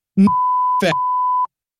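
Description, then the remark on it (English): A steady, loud censor bleep tone runs for over a second, cutting across two brief bursts of clipped speech before ending abruptly. “Whatever, we'll beep it.”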